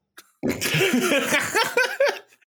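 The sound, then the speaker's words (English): A harsh, dry cough erupts, loud and raspy, stretching into a rough sputtering burst for about two seconds before trailing off with no talking. “I got like this nasty dry cough.”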